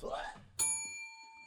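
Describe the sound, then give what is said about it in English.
A single bright bell ding rings out right after a brief burst of voice, its clear metallic tone sustaining and slowly fading away. “I had to squeeze him to go get the, the bell.”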